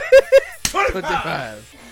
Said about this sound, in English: His hand slapped the fuck out of me. God damn it.